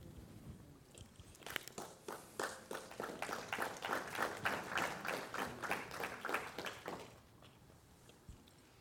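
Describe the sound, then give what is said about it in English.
An audience breaks into applause, many hands clapping in a dense, crackling wash that swells, holds steady for several seconds, then fades out quickly. “Yeah, don't clap for me.”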